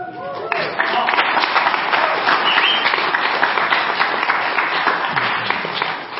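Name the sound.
audience applause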